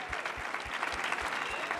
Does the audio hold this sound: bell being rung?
no